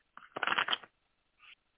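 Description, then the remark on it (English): Tarot cards are shuffled: a brief riffle with a quick burst of flapping card edges, followed by a short soft snap as the deck settles. No one speaks. “So going to do a little shuffling here.”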